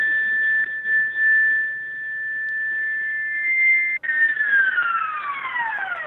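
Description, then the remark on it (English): A steady, bright synthesizer tone, a preset meant to imitate a Blade Runner sound, holds for several seconds, then cuts briefly and returns as a cluster of wavering tones sliding downward in pitch with LFO wobble, sustained and fairly loud with no voices. “Well, that didn't sound very Blade Runner. The bass is mainly Blade Runner.”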